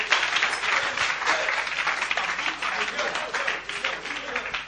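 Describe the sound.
An audience in a church applauding to welcome a bishop to the microphone, a steady dense wash of many hands clapping at once, sustained at an even loudness for several seconds, with a faint murmur of voices underneath.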